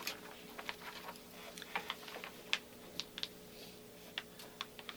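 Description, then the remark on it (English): Quiet scratching of a pen on paper as someone does longhand math in columns in an office, without a calculator: short, irregular strokes and taps in uneven bursts, with no one speaking and a faint steady hum underneath. “And I'm telling you, he's doing longhand math. He's not even using a calculator.”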